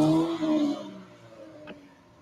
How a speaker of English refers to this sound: So this guy, listen, gotcha. This guy drives off. This guy drives off.